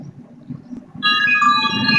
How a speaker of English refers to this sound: Are those wind chimes? It sounds like a spaceship.